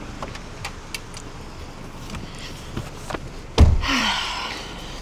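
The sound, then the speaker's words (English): Faint clicks and shuffling inside a Rides car, then a door shuts with one heavy thump. A steady airy whoosh follows the slam. No one speaks. “Once it registers that all the doors are closed, once after I close my door here, it'll tell you itself.”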